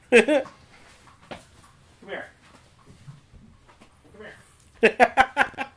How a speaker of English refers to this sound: Goddamn squeaky dogs.